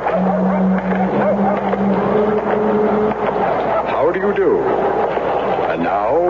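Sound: car engine stalling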